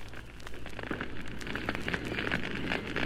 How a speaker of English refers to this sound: And that evening, on a rocky shelf where his work could be seen only by the occupants of a certain cave on the far side of the river, he built a glowing signal fire.